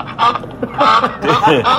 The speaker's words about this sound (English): You know, I've only got 2 sounds now. I've got the duck sound and I've got the other one, which... We haven't used yet today.